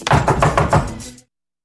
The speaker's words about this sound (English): That knock is Boyle. Holt called him to the safe house to uncuff him and to take him to his old precinct.